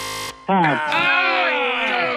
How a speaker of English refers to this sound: After the buzzer, you know what that means. It is overtime.